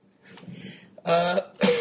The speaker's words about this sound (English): excuse me. It's been 3+ weeks. I still can't get rid of this damn cough.